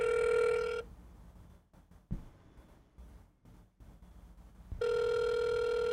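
An outgoing phone call's ringback tone: a steady, buzzy electronic tone that stops for about four seconds of quiet line noise, then sounds again. No one speaks.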